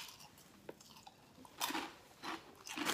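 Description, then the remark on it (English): Crisp crunching of deeply ridged Ruffles Double Crunch Hot Wing flavor potato chips being chewed, with several loud bursts of crackle between brief quieter pauses, no talking. “They're actually potato chips. They're just really deeply ridged.”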